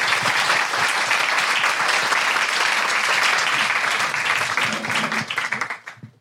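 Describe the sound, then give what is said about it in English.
A crowd applauds with dense, steady clapping that holds loud for several seconds, then thins into scattered claps and fades out. “Big round of applause.”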